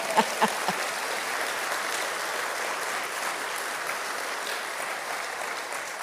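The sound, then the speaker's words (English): An audience at Celebrate Church in Sioux Falls, South Dakota, applauds steadily, a dense wash of clapping that holds at an even level throughout, with a few sharper claps standing out at the start. “Yes, you should applaud.”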